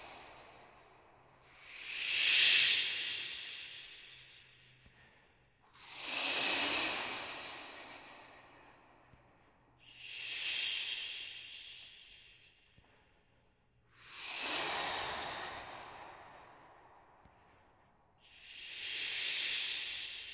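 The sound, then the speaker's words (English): A voice imitates sea waves with five breathy, shushing swells, each rising and slowly fading about every four seconds, steady, with no talking. “Then it was awakened by an old sound, the sound of the waves, the voice of the sea.”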